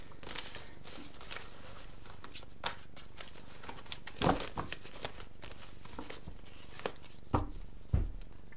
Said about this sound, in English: All right, so in terms of physical intimacy, sorry, I just feel like the cards need to be shuffled more.